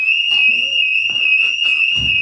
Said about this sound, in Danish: Oh, det er bullshit-alarmen, der... Nå, så røg vi ned på en DEFCON 1.